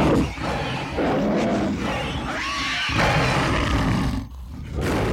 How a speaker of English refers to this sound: Okay, you hear in the distance, good deal in the distance, the definite hooting growl of owl bears on the hunt.